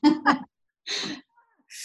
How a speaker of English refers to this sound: Sorry, as I clear my throat